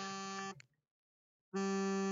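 An alarm going off: a loud, harsh buzzing tone rich in harmonics sounds, cuts out for about a second of silence, then blares again. No one speaks.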